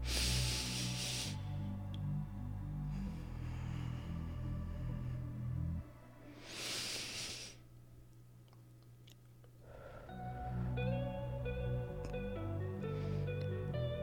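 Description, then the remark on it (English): Two long, airy deep breaths taken during a guided breathing exercise, one at the start and another midway, rise as soft hissing bursts over a quiet, steady bed of sustained tonal music. Nobody speaks. “So let's take two deep breaths here.”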